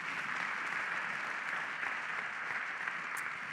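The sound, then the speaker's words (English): Steady applause from an audience clapping for a man after a prayer fills the whole stretch, a dense wash of many hands clapping at once, even in loudness with no voices over it. “Yeah, you can clap for him if you want.”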